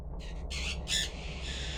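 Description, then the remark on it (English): A large bird on a porch lets out three quick, harsh squawks in close succession, the last one loudest, over a steady low background rumble. “The bird is still there. Nope. It flew away.”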